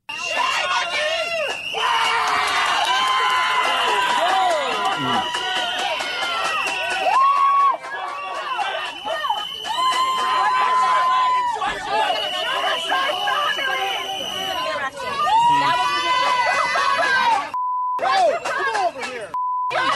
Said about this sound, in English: She's outside with another person. And this all-white liberal mob shows up and starts yelling, F white supremacy. F white supremacy? You're yelling that at a black woman? What?